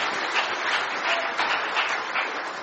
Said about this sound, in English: Well, give the crowd a round of applause. They're fantastic.